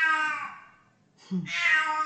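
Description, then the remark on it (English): A cat meows twice, fairly loud: a drawn-out, falling cry, a brief pause, then a second rising, whiny meow, with no one talking over it. “My cat agrees.”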